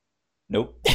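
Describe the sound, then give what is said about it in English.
A sneeze that never comes: a voiced gasping "ah" followed by a sharp, breathy intake of air, then it stops without the release. No one speaks. “Yes, for people who did not know, this is a live show, and I am about to sneeze.”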